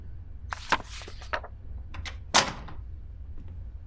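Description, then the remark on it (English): A glass door opens with a series of rattling, scraping clicks, ending in one louder clack of the latch or frame, with no one talking. “I think I can see him through the glass door. It's open!”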